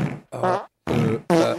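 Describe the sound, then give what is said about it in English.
Four loud, buzzy fart sound effects from soundboard buttons fire off in quick succession, with short gaps between the blasts and no one talking over them. “Now, did you push two different buttons to make that fart sound?”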